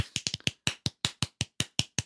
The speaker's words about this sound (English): And then what that leads to is him saying, hey, Finn, when we get to Death World 9, like, listen for this knock.